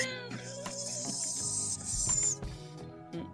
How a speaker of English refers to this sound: Actual frogs? Yeah. But I never see them. I just always hear them. They be whistling. You don't never see them? I never see them.